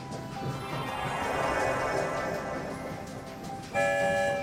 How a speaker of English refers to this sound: There goes the sound of two whistles. We're on the move, headed for the rainbow tunnel that will take us far, far away.